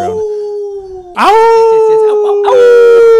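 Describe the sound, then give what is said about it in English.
A dog lets out long, sustained howls, joined by a person howling along in imitation, their drawn-out tones overlapping loudly. “You're howling with him? Howling? He never howls with me.”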